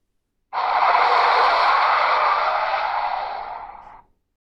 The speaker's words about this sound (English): The sound of a car screeching. I noticed that as the screech peaked, my heart rate accelerated.